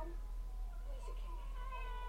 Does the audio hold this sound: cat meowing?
yes